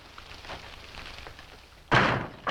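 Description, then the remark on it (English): In a Western drama scene, someone enters: a door is pushed shut with a loud wooden thud that rings briefly, followed moments later by a smaller knock, after a stretch of quiet. “Gonna leave the door open”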